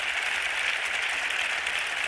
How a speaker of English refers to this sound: What a great turnout. Give yourself a round of applause for being here. There's a lot of energy in this room right now.